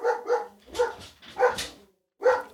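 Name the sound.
dog barking frantically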